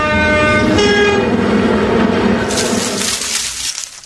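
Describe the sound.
People mimic a train with their voices, a loud sustained horn-like toot over a rumbling chug that breaks into a hissing whoosh near the end, all continuous for about four seconds.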